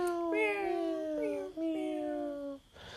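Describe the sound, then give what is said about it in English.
Human voices mimic a cat, drawing out a long, wavering meow, then two shorter meows in quick succession, loud and sustained before trailing off. “Should we meow? Meow.”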